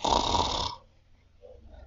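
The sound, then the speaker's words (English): A voice gives one loud, raspy snore imitation lasting under a second, followed by quieter breathy murmurs as it trails off. “Snore. Snore, snore, snore.”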